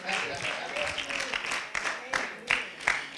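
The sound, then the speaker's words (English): An audience breaks into applause, a dense wash of many hands clapping at once, with a few sharper, louder claps standing out toward the end over a steady crowd murmur. “Oh, go on and give him a clap.”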